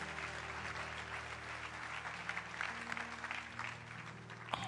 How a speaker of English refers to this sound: Yes, let's clap for God. Let's give God a big hand, a big hand, a big hand, a big hand, a big hand.